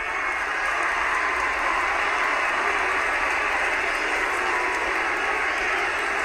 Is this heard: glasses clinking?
no